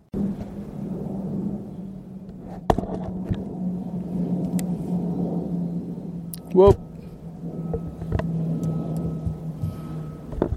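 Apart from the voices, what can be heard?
airplane flying overhead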